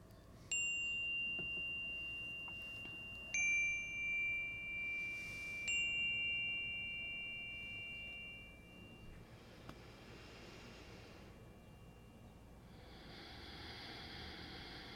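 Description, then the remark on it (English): A meditation chime is struck three times, a few seconds apart, each clear metallic tone ringing on and slowly fading into quiet. No one speaks. “We'll invite our chime to sing.”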